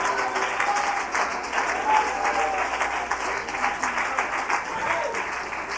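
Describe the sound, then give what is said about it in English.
A large crowd claps their hands to the Lord steadily and loudly for several seconds, the dense applause a sustained, slightly rippling roar of many hands, with faint voices mixed underneath. “Why don't you clap your hands to the Lord if you believe it?”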